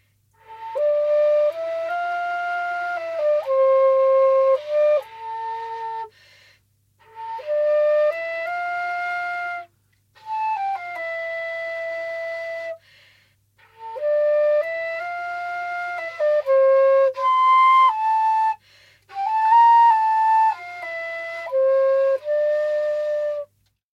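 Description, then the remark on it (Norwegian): A solo flute plays a slow melody in several phrases, with sustained, clear notes separated by short pauses. It is steady in volume, and no one speaks. “Det noe her som på en måte vekker gamle fløytemuskler? Får du lyst til å ta opp fløyta igjen?”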